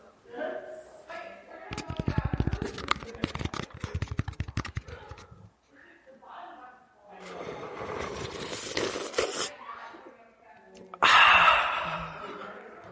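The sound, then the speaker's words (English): Wet slurping of raita, several loud, breathy pulls in succession with gasping inhales between, ending in a sharp, hissy slurp. “My last ASMR is going to be me slurping on raita.”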